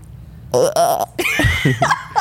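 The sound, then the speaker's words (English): A person does a goat impression: a few loud, wavering bleats with a shaky, nasal vibrato, the last one longer and throatier, with no words spoken. “Can you do your goat noise for me?”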